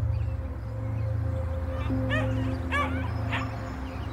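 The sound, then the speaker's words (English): A puppy gives three or four short, high-pitched yips and whimpery barks in quick bursts, over a steady low background hum. “Gorgeous little happy puppy.”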